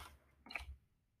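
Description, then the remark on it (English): A single quiet, sharp click of a computer mouse button, made while someone plays a computer game, sounds once midway through an otherwise near-silent moment, with no voices. “Also, I'm playing a game right now, so if you hear random clicking, that's probably why.”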